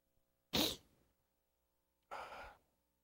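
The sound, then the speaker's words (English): A sharp, breathy gasp, like the intake before a sneeze, then after a pause a softer airy exhale as the sneeze fizzles out. Fairly loud, with no talking. “You ever feel a sneeze coming on and it goes away?”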